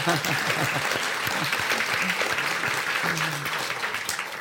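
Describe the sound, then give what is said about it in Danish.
A burst of hand clapping applause from a small group, steady and dense for several seconds, with voices faintly mixed in underneath. “Jeg tror, vi må klappe lidt for det.”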